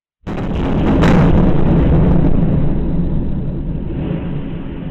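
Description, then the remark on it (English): A loud, deep explosion booms suddenly in a major city in Ukraine, followed by a second sharp blast, then a heavy rolling rumble that lingers and slowly fades, echoing as if across a city. No voices. “We start in Ukraine, where for the third day in a row, the sounds of explosions rang out in several major cities.”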